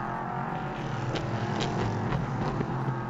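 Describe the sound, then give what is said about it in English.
A loud, steady prototype race car engine drones continuously at high revs on a racetrack, with a dense, raspy mechanical roar and faint brief surges, sustained throughout, with no voices. “When you look at that, they're going to be 57 minutes or so when he gets back on the racetrack.”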